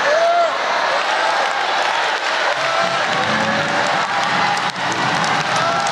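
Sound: audience clapping and cheering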